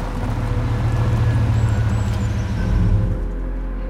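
A pickup truck drives along a gravel road, its engine a steady, loud low rumble with a continuous gritty wash of road noise, unbroken throughout, with no voices.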